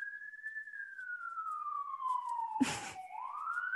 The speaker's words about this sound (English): sorry if my siren is really loud coming out of this apartment.